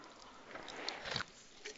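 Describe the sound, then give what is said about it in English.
Soft mouth sounds of a pastor sipping water before a morning sermon: a few quiet wet slurps and a faint swallow amid a hush, with no talking. “But first, I need a sip of water.”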